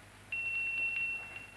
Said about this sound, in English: Ring that bell, will you?